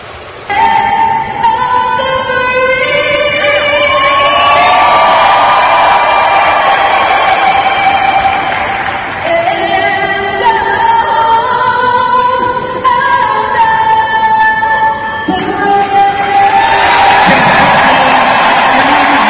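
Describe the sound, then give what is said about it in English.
A huge sellout stadium crowd in Arizona boos loudly and without a break as the Cowboys players take a knee together, a sustained droning roar of many voices whose low, wavering tones swell and fade over about twenty seconds. “and as they take a knee collectively, boos can be heard from this sellout crowd in Arizona.”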